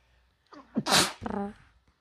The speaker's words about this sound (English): I'm gonna sneeze at you,